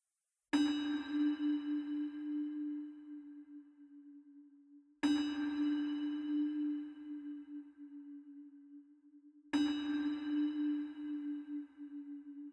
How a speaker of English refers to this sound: So if, like me, you lost someone last year, these bells are for you.